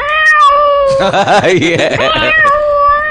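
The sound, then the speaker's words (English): A cat meows loudly in one long, drawn-out wail that wavers and warbles in the middle before settling into a steady tone, with no talking. “Where's that cat?”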